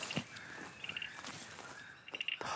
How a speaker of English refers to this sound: Found it! This sound is coming from a teeny tiny little frog. I can just see it hiding in some of the plants around the edge of the pond.